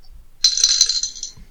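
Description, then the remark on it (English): A single eight-sided die (d8) clatters and rolls across a hard tabletop for about a second, fairly loud, rattling to a stop. No one speaks. “Can one of you roll a d8?”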